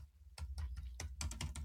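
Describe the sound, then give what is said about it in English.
Quick computer keyboard typing, a run of sharp clicky keystrokes in an uneven rhythm, fairly loud, with a low steady hum underneath and no voices. “For some reason, I'm having trouble with my keyboard.”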